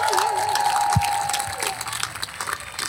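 Steady, dense applause from a sizeable audience for Shaparak Khorsandi, Harriet Thorpe, Ronnie Ancona and Sally Phillips, a continuous wash of clapping with a sustained tone humming beneath it and a few brief low thumps.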